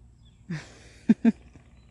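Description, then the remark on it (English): A woodpecker taps a few times: one softer knock, then two sharp raps in quick succession, against a quiet outdoor background with no talking. “There's a woodpecker.”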